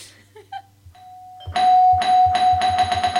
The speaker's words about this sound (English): Oh, the doorbell is also kind of a, like a correct answer on a game show.